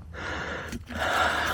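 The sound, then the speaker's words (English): Heavy, labored breathing of a person hiking up a trail to a summit, two long breathy inhale-exhale cycles with a brief catch between them, loud and airy with no talking. “Pardon my heavy breathing.”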